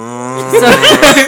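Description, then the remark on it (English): A low, drawn-out moo that starts as a steady hum and then wavers and swells, most likely a person's voice imitating a cow, fairly loud. “I don't know, mooing.”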